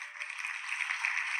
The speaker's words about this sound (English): Hey, man, shout out to you, bruh. You get hand claps, bruh.